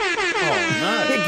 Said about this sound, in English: That's what all I want to play is my air horn.